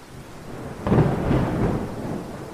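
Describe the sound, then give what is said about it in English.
A deep rumble of thunder breaks in suddenly and rolls on, loud and sustained, over a soft hiss of rain. No voices. “With it being, you know, dark and stormy.”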